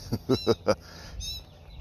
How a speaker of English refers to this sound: All right, so with that being said, and you hear the birds are out here this morning. They're really out here now.